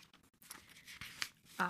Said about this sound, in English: paper is not unsticking.